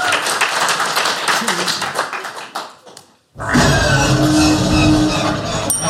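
A crowd applauds with dense, rapid clapping that fades over about three seconds. After a brief silence, a loud, sustained roaring noise with steady tones cuts in abruptly.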